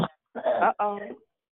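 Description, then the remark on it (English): A coughing fit: a short sharp cough, then two longer, rasping, voiced hacks in quick succession, fairly loud and with no other talking. “Uh-oh, it coughs up a lung.”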